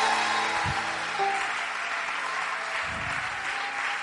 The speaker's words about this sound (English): Clap your hands. Applaudissez. Clap your hands. Applaudissez.